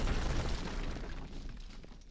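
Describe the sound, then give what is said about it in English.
A deep, rumbling explosion launches a blast door above a city, shattering sky tubes and a cathedral's stained glass. It has a heavy low-end roar and crackling debris, starting loud and slowly fading over a couple of seconds, with no voices. “The right blast door was launched even further, soaring above the length of the city, shattering several sky tubes before obliterating the ornate stained glass of the great cathedral and leveling the top layer of the structure.”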